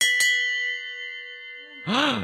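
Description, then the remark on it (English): A bell rings with two quick strikes, its bright metallic tone sustaining and slowly fading for over a second before a voice starts speaking. “Teacher says that every time a bell rings, an angel gets its gills.”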